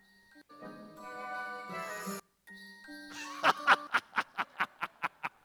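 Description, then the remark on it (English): A gong-and-cymbal sound effect: sustained metallic ringing tones, a brief pause, then more ringing topped by about nine quick, bright crashing bursts in an even rhythm that fade out. “And it all starts with gongs and cymbals. Oh, one more time, Cody.”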